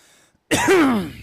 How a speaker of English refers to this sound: I'm going to cough here in the middle of the episodes.